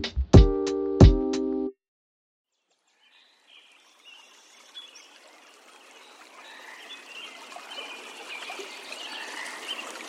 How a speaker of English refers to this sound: The space you're hearing right now is an early morning recording beside the upper McLeod River in Shasta-Trinity National Forest in Siskiyou County, California. Recorded on International Dawn Course Day 2022.